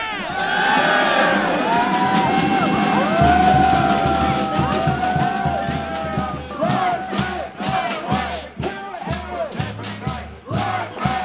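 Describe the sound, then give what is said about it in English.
A large protest rally crowd roars and cheers continuously after a speech, with overlapping shouts and whoops rising and falling, loud, while rhythmic low thuds pulse underneath toward the end. “The crowd then marched its way along the banks of the Yarra River, the full length of the casino.”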